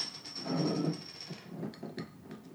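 A Stewart's Key Lime glass bottle is levered open with a lighter: a few sharp metallic clicks and taps follow a stretch of low rumbling and a steady thin high whine, with no speech.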